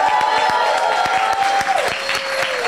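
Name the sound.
crowd applauding and cheering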